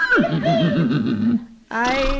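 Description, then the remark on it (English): A horse named Annabella whinnies loudly, a long quavering neigh that wavers up and down, then breaks off briefly before a second shrill burst begins. “Mamma mia, the way that horse eats is a wonder the milk company makes any money.”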